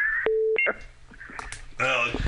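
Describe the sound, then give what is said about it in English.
A short, steady electronic call-waiting tone beeps on a phone line as someone else tries to call through, followed by brief higher chirps, with muffled voices and line noise around it. “There's somebody else trying to call through if you guys hear that.”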